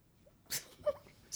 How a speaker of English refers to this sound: It's her dog. Her dog is just having a lick fest all of a sudden.